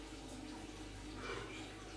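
A man urinating into a toilet: a steady, unbroken trickle of liquid splashing into water, fairly quiet and a little distant, with no talking over it.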